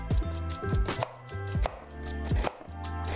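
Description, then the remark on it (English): A knife chops through an onion on a cutting board in a steady rhythm of sharp knocks, each strike thudding against the wood, with no one speaking. The onion is being cut to get it ready for frying. “And I'm gonna start cutting my onion and get it ready.”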